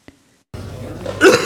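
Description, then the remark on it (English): A rough, hacking smoker's cough bursts out briefly near the end over a steady wash of room noise in a huge, reverberant space during a band rehearsal session, preceded by a faint click and a moment of near silence. “There's that smoker's cough again.”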